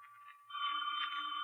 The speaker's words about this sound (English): The phone. I won't answer it. No, I won't answer it.